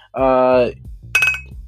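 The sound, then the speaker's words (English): A single bright clink of two coffee cups tapped together, ringing briefly, following a short stretch of voice. “Nice little clink there.”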